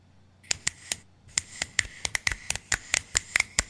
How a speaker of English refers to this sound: Do you hear that? Do you hear my snap? I hear. I'm snapping too.